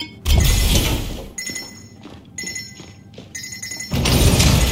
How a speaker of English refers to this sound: Now there's a ping that lets you know that there's a button that you have to press to open the next door.